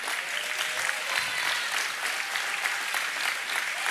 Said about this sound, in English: But we do want to take a moment to honor you, mama. So will you jump to your feet right now, and will everybody give them a round of applause?